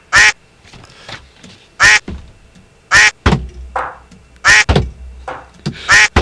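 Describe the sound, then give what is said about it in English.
A series of about five loud, nasal duck quacks at steady intervals, with softer, dull single taps on a desk sounding between them, with no talking. “The sound effect I want to hear is the ducks quack and then a single tap on the desk like he's walking around on a crutch.”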